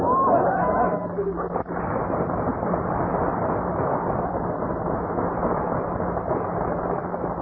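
A steady, muffled hubbub of many shoppers talking at once in a crowded department store, continuing at an even level throughout with no single voice standing out.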